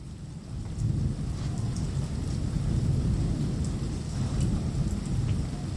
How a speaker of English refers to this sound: And then a few days later, there's rain.